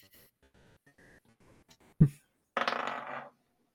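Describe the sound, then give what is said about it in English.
Dice are rolled: a sharp knock, then about a second of rattling clatter as they tumble and settle, after some faint murmuring at the start. “I'll roll the dice to see what I get.”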